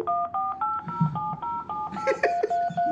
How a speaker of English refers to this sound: Dial one. Oh, that's great. You can hit redial. Let's try that.